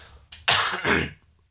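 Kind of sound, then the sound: human body sound, cough or throat clearing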